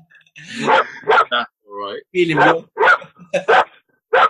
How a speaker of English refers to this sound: Sorry, guys. I told you my dog would bark at some point.